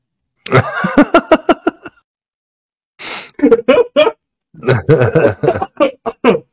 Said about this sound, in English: I think I might be getting sick. That's not good. Again? You're getting sick again? Yeah, I've been coughing a lot. I'm hoping it's all this damn dirt.